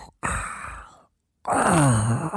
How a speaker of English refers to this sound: Anyway, speaking of bosses, when you were in a dungeon and you got close to the boss's room in the dungeon, I'll never forget the first time we heard it. There's this really creepy, like, roaring, breathing noise.